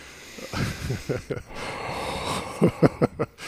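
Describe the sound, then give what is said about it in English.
Someone does a deep breathing exercise to catch their breath: a few short, breathy inhales, then a long, steady hissing exhale, ending with four quick, sharp puffs of air. No words are spoken. “Deep breathing, like breathing exercise.”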